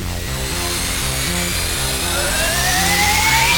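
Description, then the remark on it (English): Spaceship thrusters firing: a loud, steady mechanical roar with a pulsing low rumble, and a high whine that rises in pitch toward the end. No voices. “Firing thrusters.”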